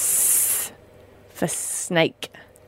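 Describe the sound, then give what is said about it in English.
A person makes a sharp, sustained "sss" hiss imitating a snake for the letter S, loud, then a second shorter hiss mixed with brief spoken sounds. “S for snake.”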